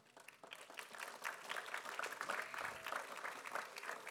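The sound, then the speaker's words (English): Steady applause from an audience, dense overlapping claps at moderate volume for several seconds, with no one speaking over it. “Man, you get a little applause.”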